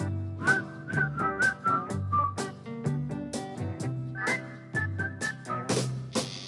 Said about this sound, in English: Guys, whistle along. Come on, guys, it's not that hard. Like this.